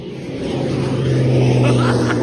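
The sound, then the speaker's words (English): A loud, steady engine drone from an airplane passing in recorded video footage, with a low humming tone and broad rushing noise that holds throughout before cutting off abruptly. No voices are heard. “Look at how I got the plane.”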